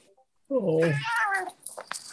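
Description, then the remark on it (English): A person imitates a horrible cat yowl: one loud, drawn-out wail that climbs and wavers in pitch for about a second, followed by brief soft rustling. “Oh, it's making horrible cat noises.”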